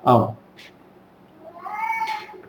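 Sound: cat meowing loudly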